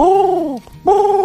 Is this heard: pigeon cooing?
yes